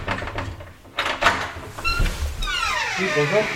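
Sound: door opening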